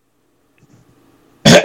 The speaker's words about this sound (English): Okay, I gotta clear my throat for this one.